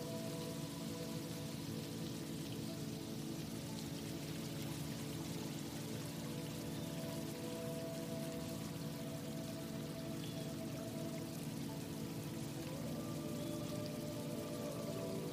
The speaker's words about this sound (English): Faintly, I want you to begin to hear water trickling.